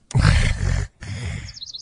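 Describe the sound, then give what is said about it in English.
A loud, harsh screeching call in two bursts from a bird deterrent speaker, the second trailing off into rapid high warbling chirps. No one speaks. “And I think the one that we just played sounds way nicer than the one they have at Costco.”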